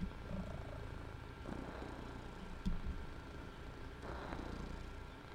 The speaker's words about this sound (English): He's a good boy. Let me see. Oh, you're very good. Listen to him purr.